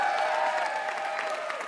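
An audience applauds steadily, a dense, continuous wash of clapping that holds an even, fairly loud level throughout, with no voices rising above it.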